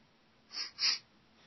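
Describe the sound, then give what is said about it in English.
Two quick nasal sniffs in a row, the second slightly louder and longer, with nothing else but faint background hiss around them. “And out here, there's some records out here. Just sniffing around.”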